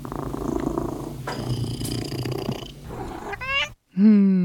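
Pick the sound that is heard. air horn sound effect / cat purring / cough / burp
cat purring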